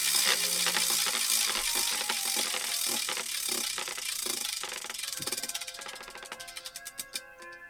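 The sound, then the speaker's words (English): A prize wheel, the 'Will of Chingadera', spins with a dense, rapid rattle of clicks that gradually slows into distinct, evenly spaced ticks as it winds down, with a faint musical tone underneath. “Let's move on to whatever the Will of Chingadera says next.”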